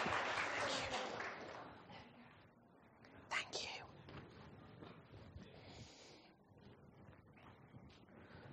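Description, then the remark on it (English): A short, soft round of applause for the volunteers during a church service: a dense wash of clapping at the start that thins into scattered claps, with faint murmuring voices underneath. “I think they deserve a little round of applause.”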